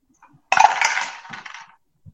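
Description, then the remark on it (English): A quick clatter of dice tumbling and clicking across a table, sharp at first and then rattling out over about a second, fairly loud with no talking. “Well, my dice are upset with me because I haven't used them in a little while.”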